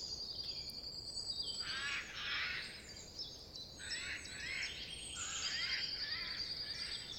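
Loud, harsh bird calls burst out repeatedly over a steady backdrop of high, thin chirping from many other birds, with no voices present.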